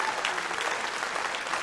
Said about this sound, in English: Come on, if you want to grow your core this year, give God a clap of praise. Come on, come on.